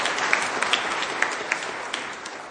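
An audience on the show Tool Time applauds steadily, a dense wash of many hands clapping with a few sharper claps standing out, moderately loud and sustained throughout.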